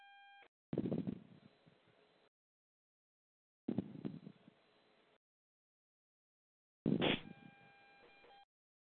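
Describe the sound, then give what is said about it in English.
Three glitchy electronic bursts from a malfunctioning phone, each a harsh crackle blended with steady beeping tones, spaced evenly apart with silence between them and no talking. “Stop acting up, phone.”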